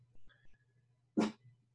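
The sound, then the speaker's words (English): A small dog lets out a single sharp, short bark, fairly loud, with a faint low hum and a soft whine just before. “So the strong, strong, very strong implication here is that there is, I can see my little dog is going to join us.”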